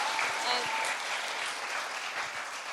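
A crowd claps steadily, a dense wash of many hands patting at once, holding an even level for a few seconds with no voices standing out.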